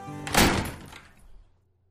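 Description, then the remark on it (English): A door swings shut with one solid thud as someone walks out, followed by a short rattling decay and a faint low rumble as the sound dies away. No one speaks. “And the young Alabaster walked out the door.”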